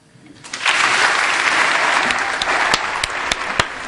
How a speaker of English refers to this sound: I have to say, I can't resist applauding. It's just extraordinary, really extraordinary.